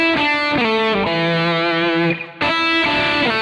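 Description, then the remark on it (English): A distorted electric guitar plays a short lick alone: sustained, buzzy notes stepping in pitch, played at the 3rd fret of the 2nd string with a hammer-on to the 5th fret, then back to the 3rd while plucking the 1st string, a brief dip near the end, then a final ringing note. “What's happening there is you're going to play the 3rd fret of the 2nd string. You're going to hit the 5th fret with a hammer-on.”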